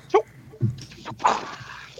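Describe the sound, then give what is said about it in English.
A dog growls in short, rough bursts while biting and holding on without letting go, over a low steady rumble, with a few sharp snorting or snapping sounds between the growls. “He's growling this thing. He's trying to bite for and real.”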